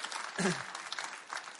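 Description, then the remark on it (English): A crowd claps and cheers for a man nearing his 80th birthday, a steady, dense patter throughout, with a short vocal whoop of cheering rising above the applause early on. “Yeah, you can cheer 80.”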